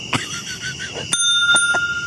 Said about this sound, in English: He's about to ring and then the bell. He rings a kid's bell. It's so anticlimactic.